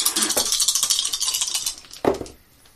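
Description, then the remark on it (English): A metal die is rolled and clatters and rattles across a table during a tabletop game in a quick run of bright, tinny clicks, ending with one sharper knock before it settles into quiet. “Look at that metal die, dude.”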